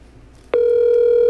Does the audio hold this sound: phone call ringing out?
yes